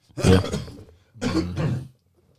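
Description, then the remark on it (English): Two rough bursts of coughing and throat clearing, each lasting under a second and separated by a brief pause. No one speaks. “About to cough out there.”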